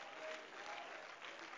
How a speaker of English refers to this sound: You believe that today? Come on, if you believe that, you ought to clap your hands and give Him praise here this morning.